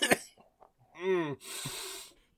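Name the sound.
coughing fit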